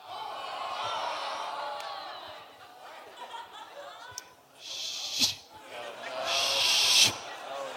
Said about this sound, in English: Shh. Shh. And I'm not naming that snake movie. I'm actually saying shh.